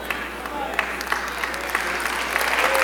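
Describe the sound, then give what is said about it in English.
An audience claps steadily in a church, a dense, sustained wash of applause at moderate loudness, building slightly toward the end, with faint voices mixed underneath. “I know everybody can't clap on that.”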